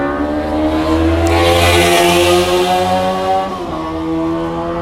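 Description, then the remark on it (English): A loud, throaty modified car exhaust revs and roars outside, its engine drone rising and holding for several seconds before easing off slightly, with no voices over it. “I will never understand why people put those sounds on their cars.”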